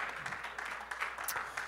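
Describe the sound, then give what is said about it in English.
A seated church audience gives the Lord a hand clap of praise, a dense, steady patter of many hands clapping at moderate volume throughout the brief moment, no voices standing out. “Would you give the Lord a hand clap of praise as you're seated?”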